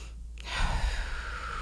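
A single deep breath taken during a guided breathing break, drawn in slowly with a soft, airy rush that swells and holds steady, with a faint low rumble underneath and no talking.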